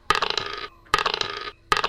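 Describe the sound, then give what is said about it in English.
Three bursts of many dice clattering and rattling across a hard table, each a dense flurry of clicks lasting over half a second, with short quiet pauses between rolls. “That's a lot of dice. You can stop rolling any time now.”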